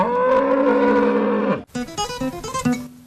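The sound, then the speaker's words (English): A dairy cow lets out one long, drawn-out moo, then a quick series of shorter, choppy lowing calls, all loud with no voices around. “I milk cows. Yeah, my cows don't like it.”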